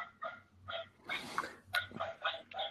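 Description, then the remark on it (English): Three pet dogs, including two dachshunds, bark and yip over and over in quick, uneven bursts, one yelp overlapping the next, moderately quiet. “you've got to take a minute to tell our listeners about the dogs we hear in the background.”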